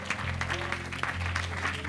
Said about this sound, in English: Come on, clap your hands with all your heart, shouting to God with a voice of triumph. Hallelujah, hallelujah, hallelujah, hallelujah.